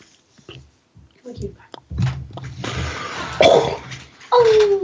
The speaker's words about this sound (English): Sorry, Dad. Oh, I was just coughing. You've got him trained to apologize when you cough? It was a weird cough. We got a little bit of a sore throat from fires, from the smoke that is persisting in Portland.